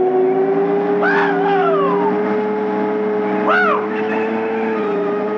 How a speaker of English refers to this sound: And, you know, what always ends up fucking it up is a bunch of yahoos on quads that come screaming through your campsite.